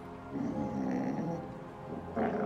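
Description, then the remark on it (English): A dog growls low and steadily for about two seconds, fairly loud, then the sound lifts into a brief, higher whine at the end. No one speaks. “the growl rising to a whine, his flanks shaking for more than just the chill.”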